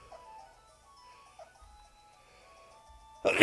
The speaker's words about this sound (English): I thought you were yawning with your tongue out. Big old. It's like, what the hell's wrong with big, you? You're like, big sneeze. Big yawn. Yeah. Nope. Big sneeze. Big sneezeola.